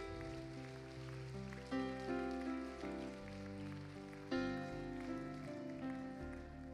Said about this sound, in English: Come on, can you give Jesus Christ a hand clap of praise?